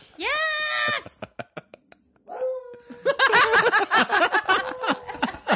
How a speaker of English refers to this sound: The dog. The dog just started howling. Even the dog's getting into it.